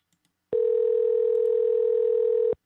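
A phone rings on an outgoing call: one steady, unbroken ringback tone lasting about two seconds, clear and fairly loud through the earpiece, with no voices around it.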